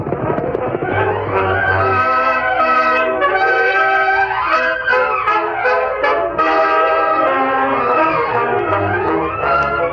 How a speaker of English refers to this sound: That's the westbound train. Left Big Springs over 30 minutes ago.